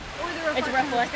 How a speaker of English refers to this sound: because of the noise of the water in the background. But here's the fountain. This is a really good, important place to talk about water in Los Angeles.